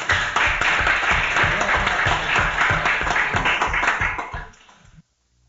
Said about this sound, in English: Thank you, and applause for them.